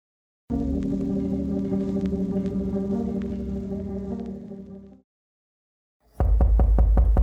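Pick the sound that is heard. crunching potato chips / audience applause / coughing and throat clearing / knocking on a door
knocking on a door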